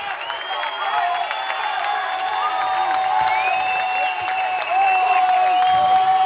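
The St. Joe's Prep crowd at a high school football game against Mount Carmel cheers and roars steadily on a fourth-down play, with whoops and shouts rising over a dense, continuous wall of noise that swells slightly louder near the end.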